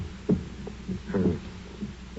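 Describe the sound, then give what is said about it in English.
A muffled heartbeat thuds softly, a few dull low beats spaced out over a couple of seconds, heard alone without any voices. “But for many minutes the heart beat on with a muffled sound.”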